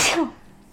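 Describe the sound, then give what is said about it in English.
A single quick, sharp sneeze, bursting out loudly and fading within a fraction of a second into quiet. “Excuse me. Thank you.”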